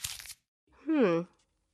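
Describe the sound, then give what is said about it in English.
A short crinkle of a paper clue from Bucky, bearing the two letters C-A, being unfolded, lasting a fraction of a second, followed after a pause by a brief voiced vocal sound. “I was told to give you this paper right here.”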